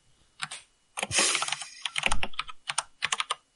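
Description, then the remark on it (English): Computer keyboard typing, fairly loud, with a burst of rapid clattering keystrokes followed by several separate, irregular key taps. No one speaks. “I'm trying to limit how much typing I do. And how loud, right?”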